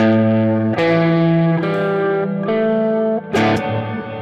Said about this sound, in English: Okay, so then left toggle to dB, right toggle switch on. Yep. Is triple octave tremolo. 3 octaves of reverb. LFO affects the volume of the reverb, creating a vintage organ effect.